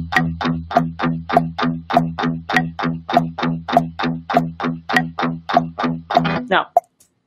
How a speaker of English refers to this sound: Okay, so we start clicking or we start this metronome and I start doing this. And I'm listening each time it comes around.